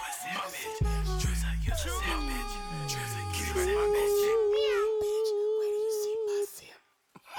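A drawn-out, wavering cat meow, loud, with sliding pitch that settles into a long sustained yowl before cutting off abruptly.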